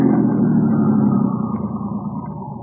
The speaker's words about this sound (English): Now what? Just leave the engine running and... both of you get out the right-hand door.